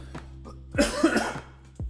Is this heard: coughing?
yes